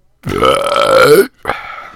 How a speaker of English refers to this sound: That's not professional, is it? I might have to actually edit that out. You might make me edit out a burp.